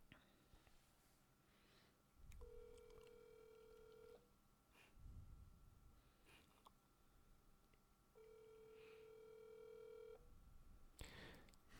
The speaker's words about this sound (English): You better pick the damn phone up, girl.